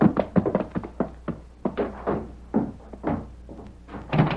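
Rapid, insistent knocking on the wooden door of Greer's place by a rider who has just raced up the hill on horseback: loud pounding in uneven bursts that keeps going for several seconds with only brief pauses and no talking.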